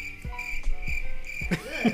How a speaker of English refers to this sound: Are you crickets? Add crickets.